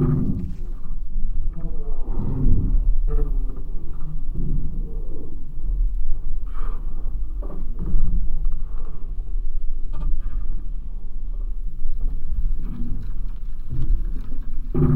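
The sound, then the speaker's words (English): Creaks and groans inside the Halfpenny Bridge, a footbridge, heard through special microphones as people cross over it: a steady, loud low rumble and groaning broken by occasional sharper cracks and knocks, with no voices. “If we listen with special microphones, we can hear all the grunts and groans and cracks and creaks.”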